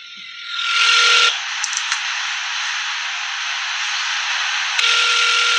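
A transferred telephone call rings while waiting for someone to pick up: two buzzing ringback tones, separated by a long stretch of steady hissing line static, with a few faint clicks and no voices.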